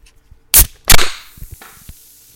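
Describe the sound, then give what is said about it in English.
A beer can cracks open with two sharp metallic pops, followed by a soft fizzing hiss that fades out with a few faint small clicks. “So that is going to be the beer we are cracking open tonight, and that is going to happen in 5, 4, 3, 2, and 1.”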